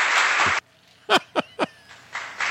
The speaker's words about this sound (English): I got to give Sticky Pirate a roaring round of applause, Robin, for that.